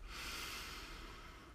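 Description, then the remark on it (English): A single long, steady inhale drawn in through the nose during a guided breathing exercise, airy with a soft hissing rush, lasting over a second with no talking. “Do a few here now with me. Breathe in.”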